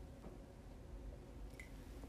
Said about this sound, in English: Excuse me one second, I'm gonna take a drink of water.